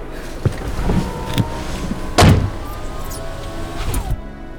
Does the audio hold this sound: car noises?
yes